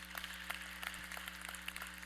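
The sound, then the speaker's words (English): An audience applauds as a guest is invited up to the stage, a continuous, subdued patter of many hands clapping, with a steady low electrical hum underneath. “And you can clap.”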